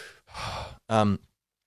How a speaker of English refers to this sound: So you're breathing in 100%, try it as deeply as possible from the belly, sort of belly, chest, head kind of thing.